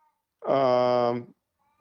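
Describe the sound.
A single long, drawn-out meow from Tommy, a part-Siamese cat, loud, with a strained, almost human-sounding voice lasting about a second, surrounded by quiet.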